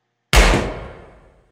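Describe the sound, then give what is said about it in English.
A single loud gunshot from a Desert Eagle handgun cracks out abruptly inside a trailer, followed by a rumbling, reverberant decay that fades over about a second. No voices are present. “From inside the trailer, two large bangs go off. And then a third.”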